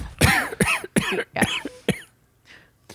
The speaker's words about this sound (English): I always like when old people cough a little more when you're like